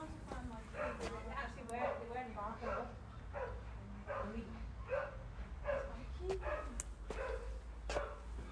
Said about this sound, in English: Right then, let's see, guys and girls, what sort of greeting we get from the dogs. Yeah? They weren't doing it, but they just started.